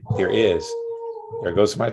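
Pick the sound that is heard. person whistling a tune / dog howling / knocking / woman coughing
dog howling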